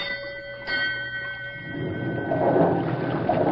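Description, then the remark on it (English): A steamboat's paddle wheel, turned up hard from the engine room, starts churning water, a heavy rumbling wash building up under a steady ringing mechanical tone and growing louder toward the end. “Signal the engine room to turn up the paddle wheel hard.”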